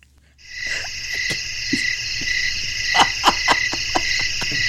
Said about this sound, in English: Crickets.